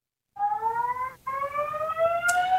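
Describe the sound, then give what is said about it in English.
A fire alarm blares a steady, harmonically rich electronic tone, cutting out briefly partway through before resuming. “That, I assume that's your fire alarm going off in the background, or they're testing it in some shape or form.”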